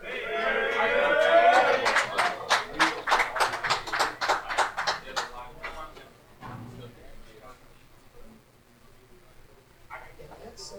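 A loud vocal shout gives way to a burst of rhythmic clapping, sharp evenly spaced claps that fade out after a few seconds, leaving faint murmuring.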